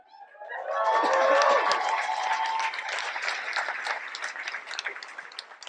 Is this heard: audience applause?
yes